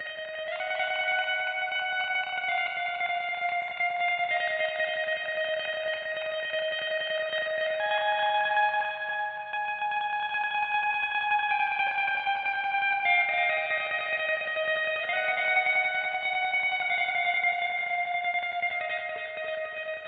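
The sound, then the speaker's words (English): An electric guitar played in a tremolo strumming style, soaked in strong delay and heavy reverb, its notes smearing into a continuous shimmering wash that shifts chords every few seconds at a steady, fairly loud level, with no voices. “The third guitar has a stronger delay effect and a heavy reverb. We were going for a spacey cosmic sound here.”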